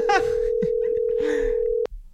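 A steady telephone dial tone hums at an even pitch for nearly two seconds as a phone call is placed, then cuts off abruptly, with faint voices and chatter underneath.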